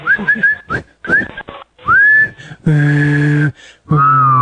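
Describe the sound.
Someone whistles a short melody, then whistles and hums together, a high clear tone riding over a low buzzing hum in long sustained notes, fairly loud, with no talking.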